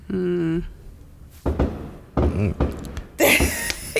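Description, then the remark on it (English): Several sharp firework pops and bangs burst out at irregular intervals on the 4th of July, each followed by a short rumbling decay. A brief voiced sound comes just before them. “If y'all hear the popping going on, there's lots of fireworks.”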